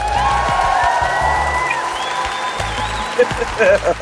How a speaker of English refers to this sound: You know, the clapping cracked me up.